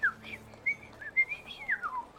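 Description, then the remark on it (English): A person whistles a quick, chirpy run of rising and falling notes, mimicking a cheerful canary's song in a series of bright, fluttering phrases. “This canary is thrilled to see you guys.”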